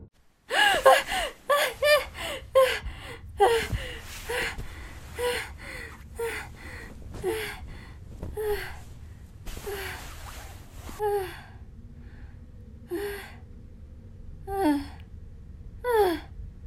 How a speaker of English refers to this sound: awoke with a gasp. She panted heavily as she shot up from her position on her makeshift bed, her body soaked in sweat, and her heart racing a mile a minute.